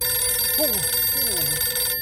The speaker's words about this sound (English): The phone rang for the second time.